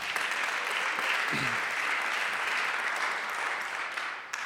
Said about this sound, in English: I want to, yeah, you can clap for that.